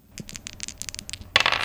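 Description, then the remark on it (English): Percentile dice rattle and clatter across a hard tabletop in a quick run of small, sharp clicks, ending in a louder burst of tumbling and scraping as they settle, with no voices. “So percentile dice for both of you.”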